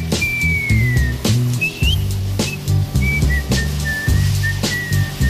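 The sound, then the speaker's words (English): Someone whistles a slow, gliding tune over a steady instrumental backing with a thumping beat, the whistled notes clear and prominent. “You can stop your whistling. We're not having any whistling in here.”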